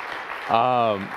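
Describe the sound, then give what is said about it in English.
A crowd at a church worship service claps for the young people who took part in the service, in a steady, dense patter, and midway a single voice lets out a sustained, held cheer over the applause before the clapping continues. “So how about a round of applause, though, for all the young people that were part of the service?”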